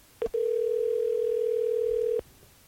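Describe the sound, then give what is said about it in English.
A phone call drops: a short beep followed by a steady, loud telephone dial tone holding for about two seconds before cutting off abruptly, heard alone without any voices. “I think we just lost her. I think we did. Are you there, Chris? It might have been her phone.”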